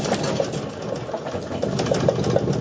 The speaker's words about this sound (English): Ever wondered what an earthquake sounds like?